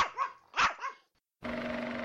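A dog barks twice in quick succession, fairly loud, with sharp yappy calls. A short silence follows, then a steady, busy background sound starts.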